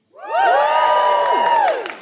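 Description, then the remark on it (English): An audience at a Valentine's Day show erupts in a loud burst of cheering and whooping when asked to cheer if they are in love, many high voices overlapping in rising and falling wails, sustained for about two seconds before tapering off. “Okay, give us a cheer if you are, and I don't really know how to put this, in love.”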